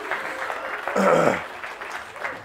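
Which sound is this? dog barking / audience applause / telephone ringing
audience applause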